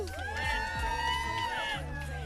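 An audience at Jamboree cheers and whoops steadily for a couple of seconds, with overlapping high shouts and sustained yells at a fairly even, lively level.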